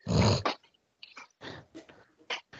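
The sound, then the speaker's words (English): A dog gives one loud, sharp bark, followed by a few softer, scattered huffs and grumbling noises. “Sorry, I had a barking dog situation.”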